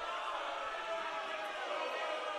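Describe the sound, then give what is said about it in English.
A large crowd at a basketball game involving Lake Washington boos loudly, a dense and steady wash of many voices that keeps going without a break for the whole stretch. “Boos all over the place from the crowd.”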